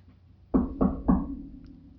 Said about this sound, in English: Wait, what's that? Somebody's knocking at our door during a live studio broadcast? Man, what a goof. Let's go see who it is.